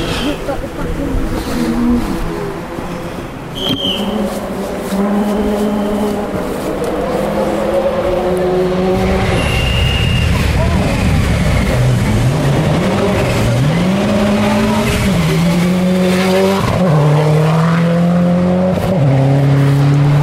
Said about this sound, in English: Subaru just went through Davis and Williams, sliding wide. I might try and find a position where I can hear the car scratching on the gravel.